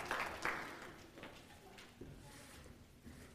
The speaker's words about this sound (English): Let's give our sprout workers a round of applause for their ministry to the little ones.